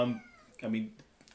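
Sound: cat meowing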